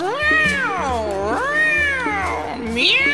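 A cat meows loudly in a long, drawn-out, wavering call that rises and falls several times, with a faint low hum underneath.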